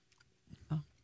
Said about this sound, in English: It really does change as you're chewing it.